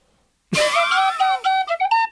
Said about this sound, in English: I'm actually right now going to play you a bit of Irish tin whistle just because I have it here to signify the lightning round is about to start.